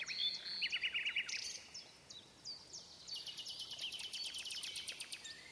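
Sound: nightingale singing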